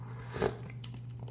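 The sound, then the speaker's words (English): A short slurping sip of tea from a cup with a brief wet burst of sound, then faint mouth clicks, over a steady low electrical hum. “excuse me, let me take a sip of my tea real quick, if you don't mind.”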